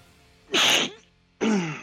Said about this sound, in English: You okay there? Bless you. I don't know why I'm sneezing so much. I'm sorry.